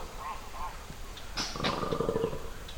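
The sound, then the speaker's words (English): Hippos grunt in a short burst of deep, rough, rumbling calls midway through, over steady outdoor ambience in the Chinko wilderness, with a couple of faint bird chirps at the start. “It isn't long before we spot hippos, too.”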